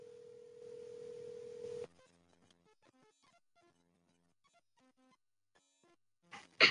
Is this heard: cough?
no